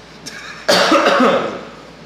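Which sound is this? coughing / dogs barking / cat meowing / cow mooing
coughing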